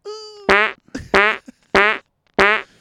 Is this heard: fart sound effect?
yes